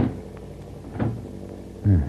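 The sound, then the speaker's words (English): A door aboard a plane is pushed shut and locked: a few light clicks and rattles of the latch, then a solid thud as it closes, with no voices. “Now, I am very sorry to leave such pleasant company, but I would feel safer if I locked myself behind this door.”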